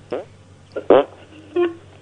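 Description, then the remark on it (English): Four short, squelchy bursts in quick succession, like armpit farts, mixed with a brief low whistling tone near the end, apparently imitated by a voice rather than made naturally. “I think it's armpit farts mixed in with a whistle thing.”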